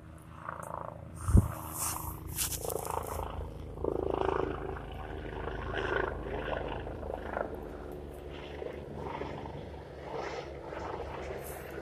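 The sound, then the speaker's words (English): A diesel vehicle rumbles past with a deep, sputtering engine drone that holds steady throughout, swelling slightly midway. A single sharp knock sounds near the start. “Sounds like a diesel tank. It's fucking farting by.”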